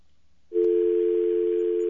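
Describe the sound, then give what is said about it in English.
A loud, steady telephone dial tone switches on after a brief moment of quiet and holds unbroken to the end, with faint clicks and hiss underneath. “Okay, this is actually your phone.”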